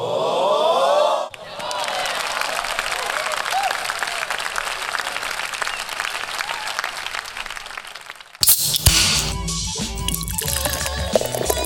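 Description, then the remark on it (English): A rising tone gives way to several seconds of dense, steady crowd applause, the bright clapping played loud like a video game applause sound effect of the Wii Sports kind, before it cuts abruptly into other noise. “I want the applause from like Wii Sports, like that kind of stuff.”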